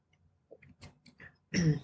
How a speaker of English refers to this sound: I'm going to take a sip of my coffee real quick.